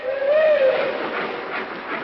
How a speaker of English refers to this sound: Yeah, there she goes. Seems funny to be standing here in the window of this hotel watching our train pull out, and we've got to stay here.